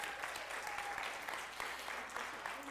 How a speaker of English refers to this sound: Applause.